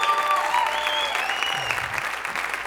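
An audience at a sermon applauds steadily, a dense wash of many hands clapping at once that holds loud throughout, with a few faint whistle-like tones rising above it and no talk.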